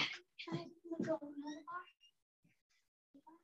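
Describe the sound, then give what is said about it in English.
A cat meows several times in quick, overlapping cries, then trails off into a few faint, short sounds after a brief pause. “I've got a cat here.”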